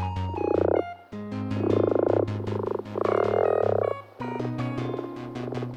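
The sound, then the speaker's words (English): Low, vibrating common frog croaks repeat in a steady rattling rhythm, each pulse buzzing like a finger run across comb teeth, with three louder swells over a constant low drone, clear with no talking. “The call of the common frog is a low, vibrating croak.”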